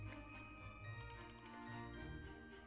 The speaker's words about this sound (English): So let's shuffle that encounter deck up.